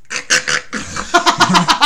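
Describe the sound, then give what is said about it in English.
A voice imitates snoring: a few loud, raspy snorting bursts, then a drawn-out noisy breath that breaks into a quick rattling series of short, harsh pulses, like a fluttering machine-gun snore. “I told him how Carter snores. It's like a wee...”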